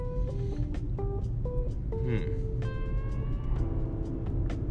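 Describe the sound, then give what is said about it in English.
The engine of a 2015 Infiniti Q70 car rumbles steadily, sounding rough and strained as if about to break down, while chirpy electronic tones step up and down in pitch over it. No one speaks. “I thought I was about to break down for good.”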